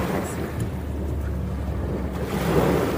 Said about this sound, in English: Aesthetic AF. Listen to the waves, everyone. Yeah, some calming sounds.